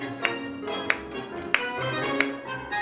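Four sharp hand claps land at an even, steady pulse, clapping out a tango rhythm that groups sixteenth notes in threes, each a crisp snap standing out over a sustained tonal musical background.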